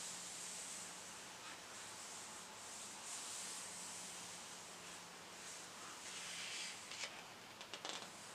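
Soft pages of a photo book being turned, a steady papery brushing and rubbing, with a few crisp little flicks and taps toward the end. Quiet throughout, with no one speaking.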